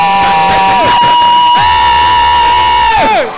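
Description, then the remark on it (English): A church audience shouts and cheers loudly together, a dense wall of raised voices with long wailing cries that rise and fall for a few seconds before trailing off at the end. “I don't know your problem, yes. But as you are shouting, yes.”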